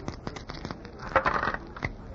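Dice are thrown and tumble across a hard surface, a quick scatter of small clicks and clatters, fairly quiet, landing five and three for an eight, with no one speaking.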